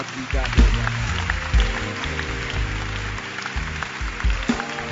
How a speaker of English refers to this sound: You can clap your hands.